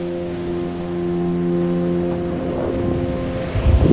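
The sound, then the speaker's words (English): Waves wash in at the water's edge of a beach as a soft, steady rush over a low, continuous droning hum, swelling into a louder surge of water near the end. No one speaks. “I'm at the literally the water's edge of the beach.”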